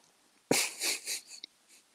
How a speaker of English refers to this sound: Right, I'm just going to have a cough because I can't breathe.